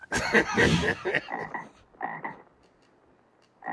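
Frogs croak in a loud, raspy opening burst, followed by a handful of shorter, softer croaks spaced irregularly with quiet gaps between them. A final croak sounds near the end.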